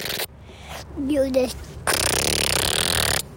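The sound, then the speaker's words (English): A voice imitates a motorcycle engine: a brief wavering hum, then a loud, sustained buzzing rasp lasting about a second and a half before cutting off. “He was trying to teach me how to do proper motorcycle sounds, which is something that I've never been very good at.”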